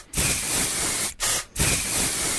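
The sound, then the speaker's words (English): A man sprays himself with Axe aerosol deodorant body spray, which hisses in three bursts, a long blast followed by two shorter ones with brief pauses between, loud with no voices. “I'd better polish my bald spot. And spray myself with two cans of Axe.”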